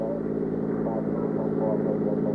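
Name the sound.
car driving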